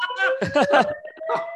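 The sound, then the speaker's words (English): A building fire alarm sounds as a steady, unbroken electronic tone, while people talk and chuckle loudly over it in short bursts. “By the way, I think I might have set up the alarm.”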